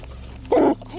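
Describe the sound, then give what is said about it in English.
A single short, loud bark of a police dog in the back of a patrol car, the sound getting closer, standing out sharply against a steady low rumble in the background. “You hear the officer's police dog barking in the back of the patrol car. And then suddenly, that sound gets closer.”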